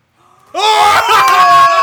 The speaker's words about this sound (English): Yell it!